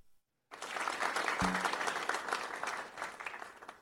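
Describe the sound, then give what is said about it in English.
A crowd bursts into steady applause and cheering after a brief silence, a dense wash of clapping that stays loud and even for a few seconds, with a short low thump partway through. “Giving y'all a big cheer.”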